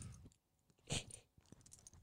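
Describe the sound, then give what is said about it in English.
A dog chews and gnaws right on a microphone, producing loud, irregular crunches, clicks and muffled thumps, with one sharp burst midway and no voices. “Don't bloody chew on the mic.”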